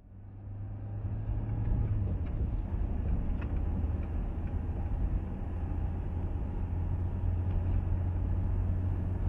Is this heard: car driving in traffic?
yes